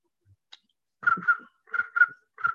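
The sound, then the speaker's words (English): Someone whistles an imitation of crickets chirping: five short, mid-pitched trilling chirps, mostly in pairs with brief pauses between, moderately loud with no talking. “Crickets.”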